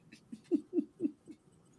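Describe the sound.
A person imitates chimpanzee chatter with a quick run of about five low, rhythmic hooting pulses, fairly soft, with no other talking.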